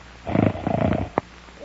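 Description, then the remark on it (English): A deep, snoring-like rumbling comes in two long, throaty bursts, low and fairly loud, followed by a single short, sharp click; no one speaks. “Oh, it sounds like my Uncle Bill does when he snores.”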